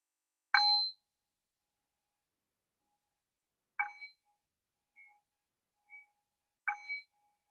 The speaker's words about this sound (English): And so we'll begin to shift away from the meditation practice and back into a conversational space. And I'll cue the shift back in by ringing the bell 3 times.